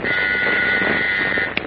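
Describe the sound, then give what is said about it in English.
An interoffice phone at the Daily Planet in Metropolis buzzes as city editor Mr. Burroughs calls Clark Kent: one long, steady, loud electric drone of about a second and a half, cut off by a brief click. No one speaks. “The following morning, 2,000 miles away in Metropolis, Clark Kent has just entered his office in the Daily Planet when Mr. Burroughs, the city editor, calls him on the interoffice phone.”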